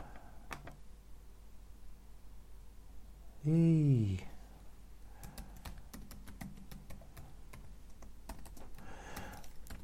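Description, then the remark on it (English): Irregular clicking of someone typing on a laptop keyboard, keystrokes coming in quick bursts, briefly interrupted by a short, loud, falling-pitched vocal sound. “Now you can't tell me that listening to me tapping on a keyboard on a laptop is boring, because it is very boring, very, very much so.”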